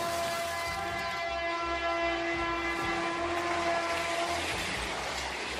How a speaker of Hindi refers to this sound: Train auto को टक्कर मार के तेज गति में निकल गई।